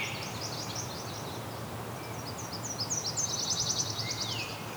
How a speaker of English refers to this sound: Okay, there's a Nashville warbler here too, singing. So very similar to mortal warbler or yellow rump warbler, whichever you want to call it. That one there.